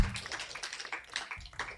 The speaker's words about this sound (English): Give yourself a hand clap for that.